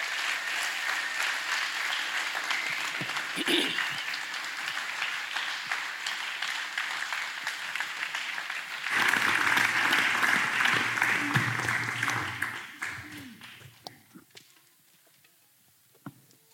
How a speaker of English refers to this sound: We're going to give them a massive round of applause.